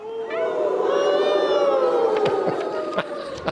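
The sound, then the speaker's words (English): Cold wind howls through twisted trees in a long, wavering moan of layered tones that holds steady and fairly loud for several seconds, with a few brief crackles near the end. “It was the cold wind whistling through the twisted trees.”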